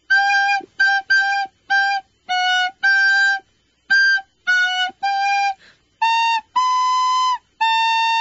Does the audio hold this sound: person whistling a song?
yes